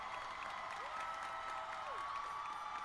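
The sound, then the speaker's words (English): A large crowd cheers and applauds continuously for Ewan McGregor (Obi-Wan): a dense, steady roar of clapping and shouting that stays at an even level throughout, with faint whistles rising out of the noise. “you're wondering who is who they're all cheering for, suave ass Ian McGregor.”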